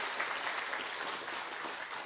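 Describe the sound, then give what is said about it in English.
A church audience applauds graduates being honored at a Pentecost Sunday service, many hands clapping in a dense, even wash of sound that holds at a constant loudness throughout, with no voices standing out. “Give them a hand clap just for their accomplishments.”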